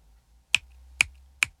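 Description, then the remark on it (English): Three sharp finger snaps, each a crisp bright crack, spaced about half a second apart against a quiet low hum, with no one speaking. “Taylor," he clicked his fingers at her.”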